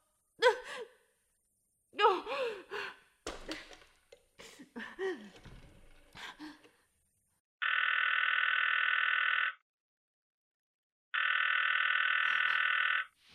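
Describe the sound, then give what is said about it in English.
Breathy sighs and gasps from a woman give way to a telephone dial tone before an operator answers: two long, steady, fairly loud buzzing tones, each about two seconds, separated by a short silence. “Operator, for heaven's sake, will you ring that Murray Hill 70093 number again?”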